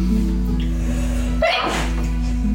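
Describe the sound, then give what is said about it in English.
A single sharp sneeze bursts out midway, fairly loud, over a steady low background hum, with no talking around it. “Bless you! Ow. Bless you!”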